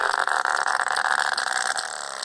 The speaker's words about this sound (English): And that's what sperm whales sound like.